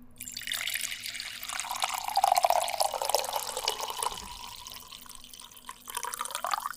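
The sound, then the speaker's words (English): Coffee poured into a cup in a steady splashing stream, its pitch rising as the cup fills, then a brief pause and a second short pour at the end. “I sat here and listened to 6 takes of coffee pours.”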